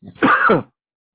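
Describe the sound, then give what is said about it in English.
One short, rough cough from a person who has had a cough for a while, a brief throaty burst lasting about half a second, with nothing else around it and no talking. “I've had a cough for a while, so talking like this is hard.”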